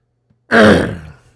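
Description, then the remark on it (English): A single loud, gravelly throat clearing bursts out after a moment of quiet, then rasps and fades over under a second, with no talking. “Let me clear my throat.”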